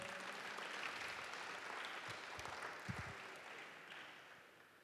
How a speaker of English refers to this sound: That's the IT department. Clap for them. Clap for them.